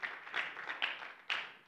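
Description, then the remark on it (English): A church audience claps together in praise of God in a dense, steady patter, with a few sharper bursts standing out, moderately loud and with no voices over it. “Come on and clap your hands and give the Lord some praise today.”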